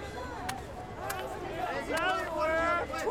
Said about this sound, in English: Oh. Big crowd.